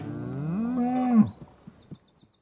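A cow lets out one loud, drawn-out moo, rising slightly before cutting off, while small birds twitter faintly in the background and a few soft knocks follow.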